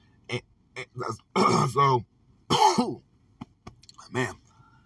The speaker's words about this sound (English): Sorry. It's like, that's starting to be my thing, isn't it? Coughing at least once on a podcast. It's crazy.